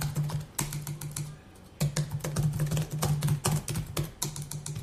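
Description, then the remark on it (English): Rapid clattering keystrokes on a computer keyboard, fairly loud, in quick bursts with a brief pause partway through, over a low steady hum, as someone types a Google search about the football club Independiente del Valle. “impossible to search on keyboard.”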